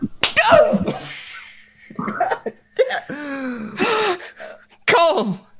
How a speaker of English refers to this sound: She reaches out a hand slowly and places it on your cheek, and it moves under your chin. And then she slaps the shit out of you.